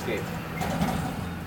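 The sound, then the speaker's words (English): A steady, rumbling wash of engine noise as landscaping trucks drive past, low and continuous with a faint mechanical rattle, holding at an even loudness throughout. “Some landscaping trucks right now, guys.”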